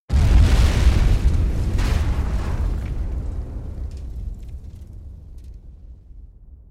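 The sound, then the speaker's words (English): A vehicle that launched off a hillside edge and fell into a ravine crashes, setting off a heavy, booming explosion that erupts suddenly and loudly, its deep rumble slowly fading over several seconds with scattered crackling debris. No voices are heard. “It crashed and produced an almighty explosion which silenced the carrion birds in the sky.”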